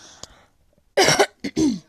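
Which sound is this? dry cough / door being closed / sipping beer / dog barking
dry cough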